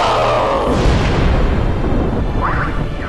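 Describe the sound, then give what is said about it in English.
A massive explosion of an unstable vortex within a well rocks a temple to its foundations, roaring into a deep, sustained rumble of quakes through the earth that shakes on for several seconds with scattered crackling debris, only starting to ease off at the very end. “The massive explosion rocked the temple to its foundations and sent massive quakes ripping through the tortured earth.”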